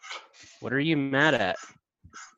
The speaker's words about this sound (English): Dog dad stuff. I've, and of course, Wilkins deciding to bark right now. What are you mad at?